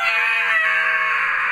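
A whole bunch of zombies scream from every direction: harsh, high-pitched screaming wails that hold steady and loud for over a second, raspy and strained.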